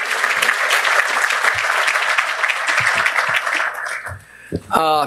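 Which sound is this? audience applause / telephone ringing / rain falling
audience applause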